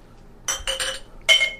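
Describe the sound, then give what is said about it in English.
Glasses clink together in a toast, three bright ringing chinks in quick succession, clear with nobody talking. “Cheers, everybody.”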